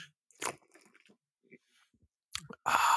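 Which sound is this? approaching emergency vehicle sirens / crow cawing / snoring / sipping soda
sipping soda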